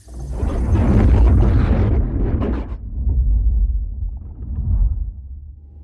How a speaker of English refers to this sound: The explosion really wrecked your kitchen. Oh, actually, most of this was Aurelia. The explosion happened in the fallopian service tube over there.